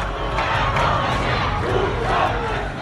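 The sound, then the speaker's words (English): A large crowd of Iranian protesters in the streets, protesting the government's cover-up of downing a passenger plane, shouts and chants together in a dense, roaring wall of voices, loud and steady throughout with no single speaker standing out. “Iranians filled the streets to protest against the cover-up, their rage compounded by the cratering economy and a leadership that seems completely out of touch.”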